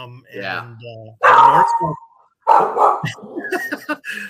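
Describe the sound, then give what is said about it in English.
A dog barks loudly, two sharp, harsh barks separated by a short pause, with people talking just before and after. “he doesn't like Norm Green either, apparently”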